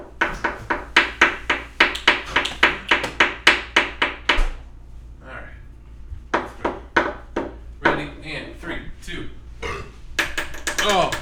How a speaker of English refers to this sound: You just picked up the chair.